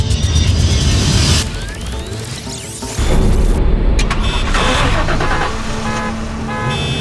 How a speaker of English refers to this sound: Whoa! You just turned on every car in this parking garage.